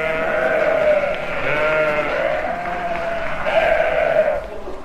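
A chorus of sheep bleating loudly, several wavering, overlapping bleats running together almost continuously for about five seconds with no talking.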